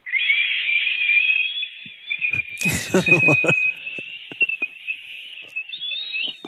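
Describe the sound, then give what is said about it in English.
A tea kettle whistles to signal the hot water is ready for tea, with a steady, shrill high tone that holds throughout, wavering slightly in pitch, while a burst of rattling clatter and a few sharp clicks sound beneath it. “So, that's what you hear when your tea kettle's ready for your tea, for the hot water.”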